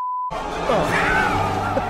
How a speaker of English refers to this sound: I had to beep out the name because they say the name of the movie there.